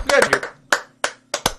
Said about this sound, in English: Show's pretty terrible, though. Still pretty bad, but I think it deserves a round of applause